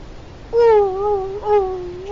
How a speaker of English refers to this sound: What's that? It's a whale. Sound like a dog.